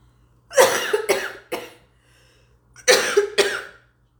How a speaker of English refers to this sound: I'm gonna cough, okay?